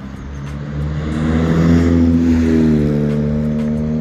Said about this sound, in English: A car driving too fast up the hill.